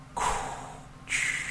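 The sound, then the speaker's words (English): A voice mimics Darth Vader's mechanical respirator from a game: one long hissing inhale followed by a raspy, airy exhale, fairly loud, with no other sounds around it. “his breathing.”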